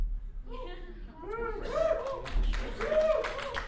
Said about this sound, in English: Are you clapping that she gets nervous? She does this.